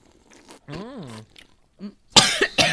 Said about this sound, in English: That was not me. That was the soundboard. Yeah, soundboard. Absolutely. You ever notice how my cough sounds identical every week? It's because it's not me coughing.